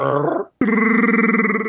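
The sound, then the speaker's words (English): A voice imitates Chewbacca's Wookiee growl: a short guttural rumble, a brief break, then a longer, louder sustained warbling growl, clear with no other talk. “Growl like Chewbacca as you're getting sucked off.”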